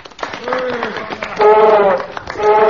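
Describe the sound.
A group of men applauding an elephant loudly on a count of three, steady clapping mixed with voices cheering and shouting together, swelling in a couple of bursts across a few seconds.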